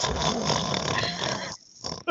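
A loud, rough, rattling snore drags on for over a second, breaks off into a short silence, then the next noisy inhale begins, with no talking.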